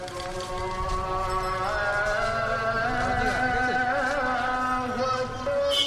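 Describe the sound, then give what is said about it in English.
Dense, continuous city traffic din in Bangladesh, with trucks and two-wheelers rumbling and bicycle rickshaw bells ringing, tonal bell-like tones and horns cutting through, steady and loud throughout without a pause. “Amid the clamor of trucks, two-wheelers, and bicycle rickshaw bells, loudspeakers broadcast the hazan, or Muslim call to prayer.”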